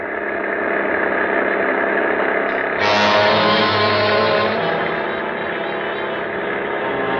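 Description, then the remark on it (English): An old, souped-up car engine runs with a steady, rough rumble, surging louder a few seconds in and then holding a gritty, sustained drone as the car drives onto a slick, icy road. No one speaks. “I've got her souped up to where she'll go 50.”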